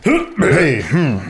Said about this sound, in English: Get all the burps out.